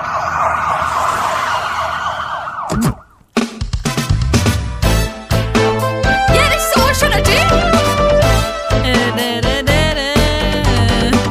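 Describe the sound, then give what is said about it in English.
A wailing siren opens for a few seconds before cutting to a loud, punchy 1980s-style TV police drama theme tune, with driving drums and bold synth melody filling the rest. “This is what the Bill's theme tune went like from.”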